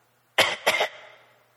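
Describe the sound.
A voice imitates the cough of a girl who is nearly four, at 2 a.m.: two quick hacking bursts in a row, the second trailing off into a soft fade, with no talking around it.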